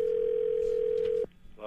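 A steady, unbroken telephone dial tone hums at a single mid pitch for over a second as a phone call is being placed, then cuts off abruptly, leaving faint line noise and a brief click.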